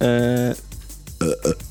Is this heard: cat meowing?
no